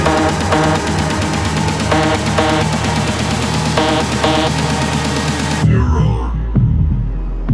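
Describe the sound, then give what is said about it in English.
A loud, dense synthesized pulse throbs steadily with a buzzing electronic texture, then drops away to a few deep, booming heartbeat-like thumps at the end. “BPM selected. Heartbeat synchronized.”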